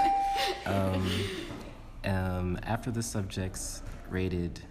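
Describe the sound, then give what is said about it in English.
A doorbell chimes in a few sustained, ringing tones, starting with a thin steady note and then repeating fuller chimes with short pauses between them, clear. “Sorry about the bell.”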